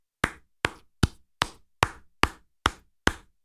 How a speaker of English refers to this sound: That's me applauding the guy.